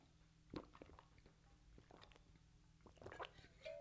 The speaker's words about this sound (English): before we get into that, I got to have a sip of water. You guys and gals know how this goes.